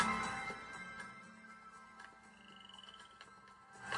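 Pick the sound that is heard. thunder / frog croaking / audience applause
frog croaking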